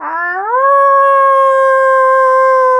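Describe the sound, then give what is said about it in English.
A person imitates a wolf howl, tongue touching the roof of the mouth: one sustained, loud voice that starts low, slides upward, then holds a steady, clear tone for a few seconds. “Can you teach me how to do a proper howl?”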